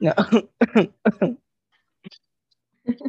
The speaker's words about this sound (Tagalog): Parang totoo na yan. Inuubo nga ako ngayon, baka may COVID ako.